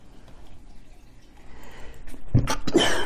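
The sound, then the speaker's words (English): A single sharp sneeze, set off by a bit of fluff, bursts out after a couple of seconds of quiet room noise, with a short breathy intake just before it. “And then I think I sneezed on a little fluff.”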